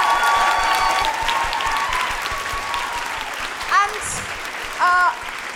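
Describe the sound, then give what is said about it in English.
A theatre audience at Giant Dwarf claps steadily and loudly for several seconds, applauding the theatre's staff, the dense applause filling the theatre, with a few sharp whistles and cheers rising above it near the end. “Can I please have a big round of applause for everybody who works here at the theatre?”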